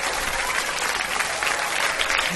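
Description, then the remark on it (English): A recorded applause sound effect: steady applause from a crowd, a dense wash of clapping hands that holds at an even, fairly loud level throughout with no voices standing out. “No, that's applause.”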